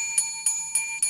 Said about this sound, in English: That is, you know what that is? It says 10 hours. Hotel bell for 10 hours.